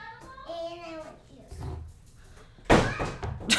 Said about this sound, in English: Close the door.